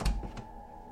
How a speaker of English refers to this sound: It's only a closet sometimes, Jamie says, as if I should know this. She opens the door.